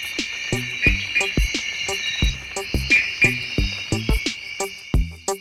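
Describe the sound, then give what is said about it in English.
A male gray-eyed frog of Africa calls from high up in the trees, a rapid, irregular series of short knocking calls, fairly loud, over a steady high-pitched buzz of insects. “Male gray-eyed frogs call from high up in the trees.”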